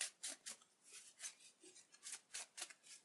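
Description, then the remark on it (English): A deck of playing cards being shuffled close to the microphone, a quick series of crisp, papery flutters and snaps repeating in an uneven rhythm, with no voices. “I'll do it right by my microphone so people can really hear the shuffling.”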